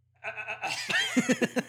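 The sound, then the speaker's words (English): A person imitates Chewbacca's bleating roar: a sustained, wavering, goat-like cry that breaks into a rapid series of stuttering pulses, fairly loud, with no other speech. “How's Chewbacca sound again?”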